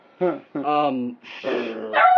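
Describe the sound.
A man imitates a barking dog with a few gruff, growly barks in quick succession, loud, ending on a rougher rising bark.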